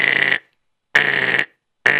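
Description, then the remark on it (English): An intercom buzzer in a building, used to buzz upstairs, sounds in three harsh, steady bursts, each about half a second long with abrupt starts and stops, separated by short silences. The tone is loud and raspy, with no voices. “Can you please call your boss down here? Yeah, sure. Let me buzz upstairs.”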